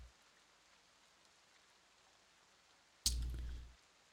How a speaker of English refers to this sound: You should hear something. Not music, but rain or whatever. Oh, rain. I hear rain.